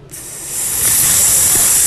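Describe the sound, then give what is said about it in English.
A voice imitates a creeper's hiss: one long, steady, breathy hiss that starts abruptly and swells slightly louder, lasting about two seconds with no talking. “I want a little mini creeper coming by behind me and every once in a while going...”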